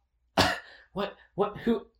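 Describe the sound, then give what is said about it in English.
A woman coughs in a Minneapolis hotel room: one harsh, explosive cough followed by three shorter, throaty hacks in quick succession, with no speech around them. “And suddenly, she is coughing up a strong.”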